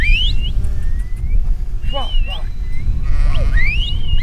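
A flock of sheep being brought into pens on a mountain slope by several shepherds and their dogs bleat over and across one another, several wavering calls overlapping, over a steady low outdoor rumble.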